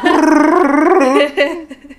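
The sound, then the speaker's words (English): A voice imitates a growling alien creature: a loud, rough, warbling howl held for over a second, followed by a shorter throaty burst that trails off. “Chewbacca?”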